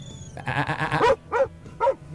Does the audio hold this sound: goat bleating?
yes